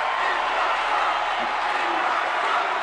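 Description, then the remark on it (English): A large rally crowd shouts and roars, urging Cruz to endorse Trump, in a steady, dense wall of overlapping voices, loud and continuous with no single words standing out. “crowd urging Cruz to endorse Trump, which he hasn't done yet.”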